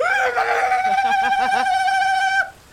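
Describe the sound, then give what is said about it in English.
A single loud, high-pitched war cry held for over two seconds, steady at first, then warbling briefly before cutting off abruptly. “Just a crazy war cry.”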